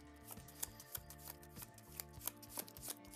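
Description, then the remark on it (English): Cards being shuffled by hand, heard as a steady series of crisp taps and slaps about three per second, playing over quiet background music with no talking. “Technically, we're supposed to shuffle, so we'll follow the new rules and shuffle.”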